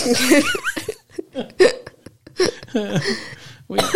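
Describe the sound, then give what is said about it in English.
A person has a coughing fit, coughing in a series of short bursts with voiced, hiccup-like breaths between them. The sounds are fairly loud and come in an irregular rhythm. “It feels like the coughing.”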